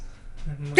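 A loud, wet burp: a low, throaty rumble that swells into a short, harsh, gurgling burst at the end, heard alone with no talking.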